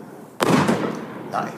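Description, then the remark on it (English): A 49-shot firework cake with big, smoky breaks and crackle fires off a sharp, loud burst that rolls into a crackling, smoky rumble, followed about a second later by a smaller pop, heard outdoors. “So we have 49 shots, big breaks, smoky breaks.”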